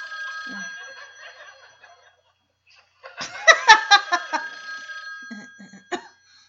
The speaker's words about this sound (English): Will you just pick up the phone?